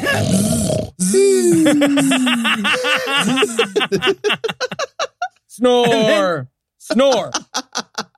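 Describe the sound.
A person imitates snoring with their voice: a long drawn-out rasp, then a string of short choppy grunts and snorts, another long rasp, and a few final staccato bursts.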